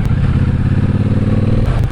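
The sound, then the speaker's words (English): A cruiser motorcycle being ridden runs steadily, a loud, deep rumbling engine with a throbbing low-end pulse that holds even throughout, no voices present. “Love the sound of the engine.”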